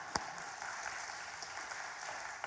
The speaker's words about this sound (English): Praise team, thank you. Can we give our praise team a round of applause?